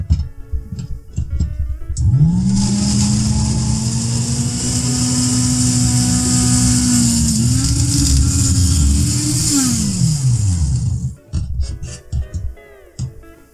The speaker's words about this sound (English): Is it a Hamilton blender? It is a... This one's a Waring Pro.